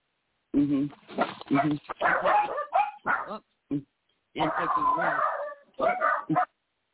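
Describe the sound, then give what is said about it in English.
Two-week-old puppies that have just opened their eyes yip and whimper in a busy chorus of short, high-pitched cries, coming in two main bursts separated by a brief lull. “Oh, I've got puppies.”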